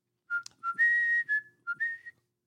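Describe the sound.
Someone whistles a short film-theme melody alone, about six clear notes with upward pitch steps and a couple of longer held tones, fairly loud and bright.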